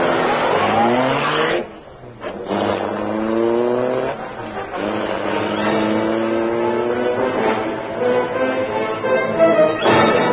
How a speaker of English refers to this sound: Britt Reed pressed a button. The great car roared into life. A section of the wall in front raised automatically, then closed as the gleaming Black Beauty sped into the darkness.